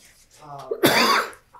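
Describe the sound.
A single sharp cough bursts out, loud and broad, following a brief stretch of murmured voice at the start.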